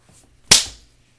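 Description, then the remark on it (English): A single sharp, loud slap cracks out, a crisp smack with a brief fading tail, with no voices around it. A woman hits a man hard across the face during a fight. “Annalise slapped the shit out of Dalo. She slapped his ass so hard”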